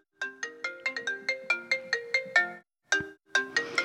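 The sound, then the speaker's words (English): A generic iPhone ringtone plays a bright, rapid melodic pattern of plucked, marimba-like notes, repeating in quick succession, clear and with no voices. “I've just got a generic iPhone. Wait. How do I control an iPhone? You can just make them play, right?”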